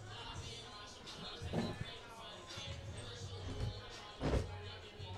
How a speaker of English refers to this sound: I was throwing my whole body weight into that fucking door